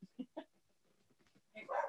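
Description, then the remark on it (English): A dog named Tito barks outside the window three times in quick succession, then after a short lull lets out a louder, more agitated burst of barking. “You may be wondering who that is outside the window barking.”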